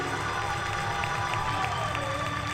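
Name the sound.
audience clapping and cheering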